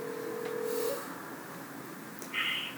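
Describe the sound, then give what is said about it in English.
A phone call being placed to the speaker's cousin: a steady low electronic tone for about a second, a pause, then a short, higher-pitched beep, all moderately loud with no talking. “So we're actually going to phone in my cousin,”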